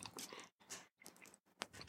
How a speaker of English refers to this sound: Chocolate-covered pretzel. Yeah, it's one of the hard pretzels, and sometimes you go to inhale when you go to take the second bite, and you get the pretzel dust.